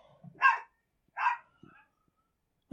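A dog lets out two sharp, fairly loud barks about a second apart, followed by a brief quiet stretch and the start of another sound at the very end.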